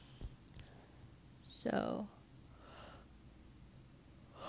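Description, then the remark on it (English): A single breathy yawn with a brief voiced stretch in the middle, surrounded by quiet breathing and faint background noise; no one speaks. “Sorry, I had to yawn.”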